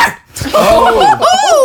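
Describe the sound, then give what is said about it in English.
A person imitates a dog barking with two drawn-out, yowling vocal barks in quick succession, loud. “It does have a could you do the bark for us? Do the bark.”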